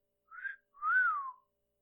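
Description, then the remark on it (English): A person gives a single clear wolf whistle imitating a male booby, a short rising note followed by a longer sweep that climbs and falls away, heard alone with silence around it. “Can anybody do a wolf whistle?”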